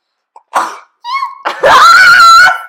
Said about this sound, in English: I actually sneezed